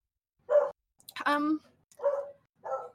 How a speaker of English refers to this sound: Sorry, my dogs. I don't know. I guess in a lot of ways, I always say that it's like I have two beagles and they just bark nonstop.